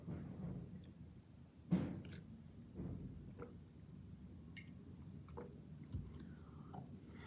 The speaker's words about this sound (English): I also just want a sip of water.